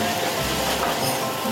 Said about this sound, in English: One by one, the chef places the uncooked shrimp in the hot frying pan. Once they start to turn red, he adds garlic, butter, salt, and pepper before placing the shrimp atop a salad.